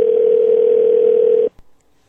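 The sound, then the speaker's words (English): A steady, loud telephone dial tone as a call is placed to the speaker's wife hums for about a second and a half, then cuts off abruptly, followed by a faint click and near silence. “So get my wife on the phone here and talk to her about this.”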